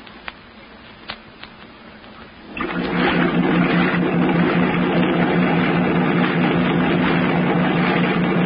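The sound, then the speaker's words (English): After a few quiet seconds with faint clicks, a motorboat engine roars in and holds a loud, steady, throbbing drone on the water as the boat heads for the mainland. “Run the boat up alongside that old piling and tie her up, Skip.”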